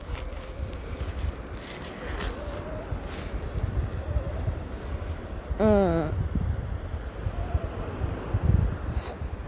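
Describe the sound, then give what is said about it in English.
Ocean waves wash onto a beach in a continuous broad roar mixed with wind rumble, with a brief warbling, chirping call rising above the surf partway through. “I don't know if you guys can hear the ocean back there, but it's amazing.”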